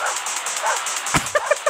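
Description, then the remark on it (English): A few short, sharp dog barks and yips punch through a steady musical backing, coming in quick succession near the end, used as the vocal line of a 48-second song by a band fronted by dogs. “Fronted by Dogs.”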